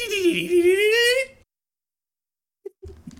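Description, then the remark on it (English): A person imitates a dolphin with a high, wavering squeal lasting over a second, dipping and rising in pitch, followed by silence and then the start of someone talking. “That was a very bad dolphin noise from the episode where SpongeBob learns to curse.”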